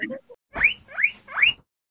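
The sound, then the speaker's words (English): Three shrill, rising guinea pig squeaks in quick succession, each a loud upward-sweeping whistle, evenly spaced, following a brief voice fragment at the very start. “And that stupid sound of the guinea pig.”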